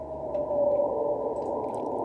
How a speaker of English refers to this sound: He did do his like sad like whale call while he was like beached